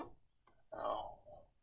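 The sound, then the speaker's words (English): A quiet stopwatch sound effect: a couple of soft clicks, then a short, brighter mechanical burst of ticking that fades out. There is no talking. “Well, I got to fire up the time clock here.”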